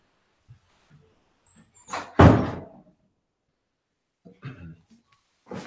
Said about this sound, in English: Sorry, let me shut my office door here.